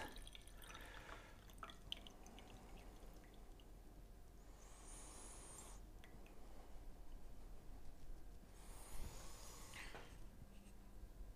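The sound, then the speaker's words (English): Freshly brewed tea, made from a cultivar also used for kabuse or gyokuro, is poured in two short, hissing streams separated by a brief pause, with soft dripping and faint handling sounds in between. No one speaks. “So then let's brew this and pour this.”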